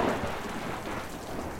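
Steady, dense rain hisses continuously at a constant level under heavy cloud cover, with a low rumble of thunder rolling underneath. No voices are present.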